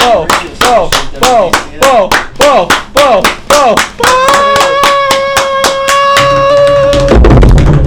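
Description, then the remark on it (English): Steady, rhythmic group clapping at about three claps per second, loud, with voices whooping along and then holding a long sustained note before the clapping speeds up at the end. “We're just giving you a slow clap.”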